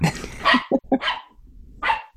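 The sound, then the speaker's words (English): Several dogs bark in quick, overlapping bursts, loud, with short sharp yips mixed in and brief pauses between outbursts. “I know, and they're not having it. They're having a fit.”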